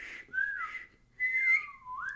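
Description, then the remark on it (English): Breathy whistling in three short phrases of gliding, wavering tones, drawn in on an inhaled breath, with brief pauses between them and no talking. “I can't whistle blowing. Just I can only whistle sucking.”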